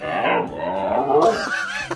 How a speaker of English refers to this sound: Try that again. That's a golden retriever. That actually sounds like Elmer Fudd.